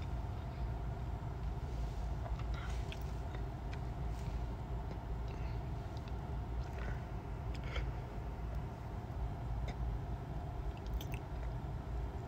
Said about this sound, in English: Am I munching on? Pizza.